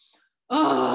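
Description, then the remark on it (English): A short breathy intake, a brief pause, then a loud, sustained groaning exhale with a strong voiced rasp, forceful, a yoga lion's breath done as a breathing exercise to release anxiety. “it's called the lion's breath in yoga”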